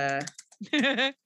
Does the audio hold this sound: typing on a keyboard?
yes